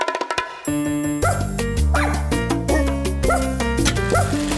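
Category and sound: animal, dog barking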